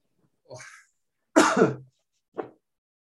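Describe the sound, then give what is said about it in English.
A loud, explosive sneeze: a softer breathy lead-in, then a strong harsh burst, followed by one short sharp catch. No one speaks. “Bless you. Is that an allergic reaction to YouTube or no?”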